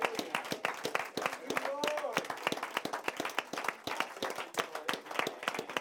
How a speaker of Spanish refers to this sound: In this morning, y en esta mañana, it's very special. Es muy especial. And I would like to give the Lord Jesus Christ an applause. Y a mí me gustaría darle un aplauso a nuestro Señor Jesucristo.